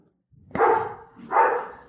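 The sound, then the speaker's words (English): A dog barks loudly at the mailman, two barks in quick succession, the second following about a second after the first, with no one talking. “It's just the mailman.”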